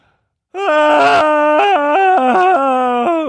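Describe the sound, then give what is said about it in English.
Loud, sustained wailing and screaming voices from the film Midsommar start abruptly after a brief silence, holding anguished tones that rise and fall in pitch without pause, with no speech. “Stop, make it stop! They're screaming!”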